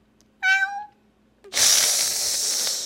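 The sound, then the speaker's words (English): A person imitates a cat with one drawn-out meow, followed after a short pause by a loud, sustained hissing rush of noise that lasts to the end. “I need a meow of the week. Yeah. I'll demonstrate for you. Meow. Meow.”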